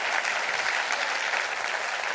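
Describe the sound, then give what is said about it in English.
Steady applause from an audience clapping their hands in praise of God during a sermon, many hands clapping at once in a dense, continuous wash of sound without pause or voices over it. “Clap your hands over that.”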